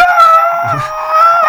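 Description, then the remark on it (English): A person lets out a loud, sustained, howl-like primal scream therapy scream lasting about a second and a half, steady in pitch, with no talking over it. “And they practice this particular technique called primal scream therapy. Right. So you just go...”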